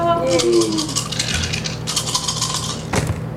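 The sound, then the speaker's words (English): A quick flurry of three dice clattering and rattling across a tabletop, several sharp clicks over about three seconds, ending with a final knock, with faint background voices. “And then can I use... A willpower? Yeah. Yeah. Okay. And three dice.”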